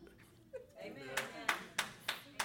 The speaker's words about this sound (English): I got one hand clap. That's all right.